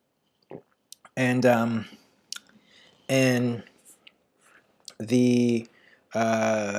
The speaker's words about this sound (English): Hold on, I'll take another sip.